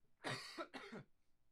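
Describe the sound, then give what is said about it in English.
Two quick, harsh coughs in close succession, loud, with no talking around them. “Sorry, I had to cough.”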